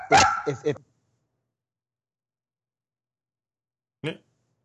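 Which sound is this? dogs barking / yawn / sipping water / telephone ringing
dogs barking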